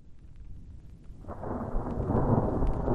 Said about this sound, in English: With tents up, deep slumber ensues, but about 4 a.m., I am woken up by the flashes and cracking of the now approaching storm.